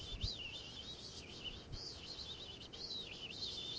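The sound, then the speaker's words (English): A thin, high-pitched human whistle, a special whistle meant to call gnats out, wavers up and down in a continuous, faint warble, held steadily for several seconds with no talking over it. “It's a special gnat whistle that you can do.”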